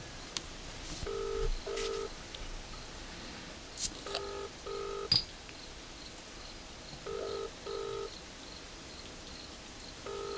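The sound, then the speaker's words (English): A telephone ringing tone heard down the line on a call to Canberra, repeating a double-burst pattern three times at a steady pace over faint static hiss with a few soft clicks, and no one speaking. “Still ringing.”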